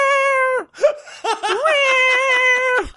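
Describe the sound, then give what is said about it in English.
A man's voice imitates a cat meowing: a long, high, drawn-out note, a short break, then a few quick rising yowls flowing into another sustained meow, loud. “Everyone likes cats.”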